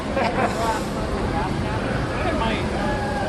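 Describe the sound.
A steady, loud boat engine drones throughout with a deep low rumble and broad hiss, while indistinct voices murmur faintly beneath the noise.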